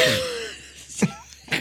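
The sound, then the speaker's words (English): A breathy vocal sound: a sharp intake of breath followed by two short, rough cough bursts, with no talking. “That was a cough.”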